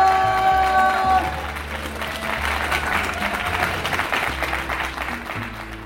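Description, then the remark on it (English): An audience claps steadily, a dense wash of many hands sustained throughout, with a sustained musical tone fading out early on and low musical notes continuing beneath the applause. “Big round of applause!”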